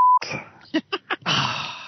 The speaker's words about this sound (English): I beeped it out for anyone that was listening. What? Because it was so disgusting. There were several beeps. There were several beeps.